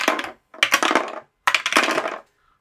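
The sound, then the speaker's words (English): Three quick bursts of hard clattering as red and black dice are rolled on a table, small objects tumbling and skittering across the hard surface, each lasting under a second with short pauses between, fairly loud with no voices. “I'm taking the red dice. Taking the black one.”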